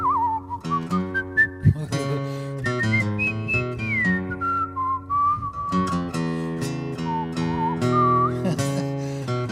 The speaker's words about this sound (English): How to whistle, folks. Just gonna have to bear with me here.